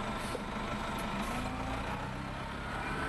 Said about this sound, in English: and what he just said was, those are some nice bus sounds. He points the mic at the bus, you know, the blimp on the stick, and we stand there for a bit.